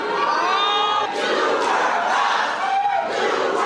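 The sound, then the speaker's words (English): A rowdy crowd at a city meeting shouts and jeers continuously as city leaders try to explain a decision, many voices overlapping in a loud, dense roar with occasional sharper yells rising above the din. “City leaders tried explaining the decision, but the crowd did not want to hear much of what they were saying.”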